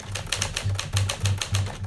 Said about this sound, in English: This is Brian Sonia-Wallace tapping away on his vintage Smith Corona typewriter in his apartment in Los Angeles.